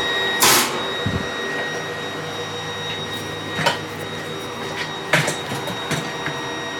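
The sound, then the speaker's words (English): A malfunctioning studio server gives off a steady, thin high-pitched electronic beep tone over a low mechanical hum, broken by a few sharp clunks and clicks. No one speaks. “Getting a beep.”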